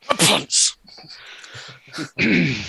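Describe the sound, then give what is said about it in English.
A loud sneeze bursts out near the start with a sharp hissing exhale, followed by quieter breathy noises and another burst of sound at the end. “Gesundheit.”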